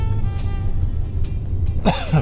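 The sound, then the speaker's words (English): A single short, fairly loud cough bursts out near the end over a steady low rumbling background, with no talking. “A little bit of a cough going on.”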